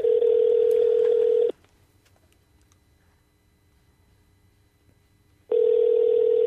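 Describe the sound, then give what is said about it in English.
A telephone ringback tone sounds twice as a loud, steady buzzing hum, each burst separated by about four seconds of quiet line hiss, with no voices. “Hey, it's ringing.”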